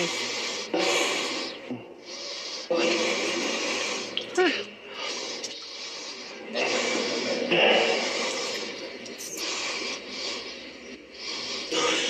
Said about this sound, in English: we compiled from the speech, this is Donald Trump sniffling